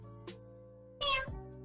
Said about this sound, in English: Okay, a cute cat noise, all right.